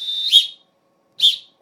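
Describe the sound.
Two sharp, shrill whistle blasts like a coach's referee whistle, the first long and trilling, the second shorter, loud with silence between them.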